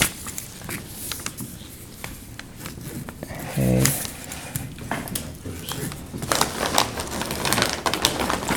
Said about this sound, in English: Okay, forgive my handwriting, and I don't want this paper to be holy. So because I wrote God's name, I put a dash between each letter to separate them.